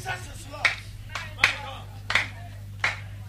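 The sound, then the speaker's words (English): Congregation clapping in unison during a sermon: four sharp, evenly spaced claps about a beat apart, set against a steady low hum and faint background voices. “I like your clapping.”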